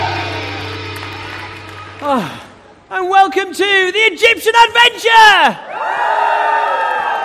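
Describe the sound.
A large crowd of children cheers, shouts and applauds in a sustained roar that swells at the start and again at the end, with an excited voice speaking loudly over the noise in between.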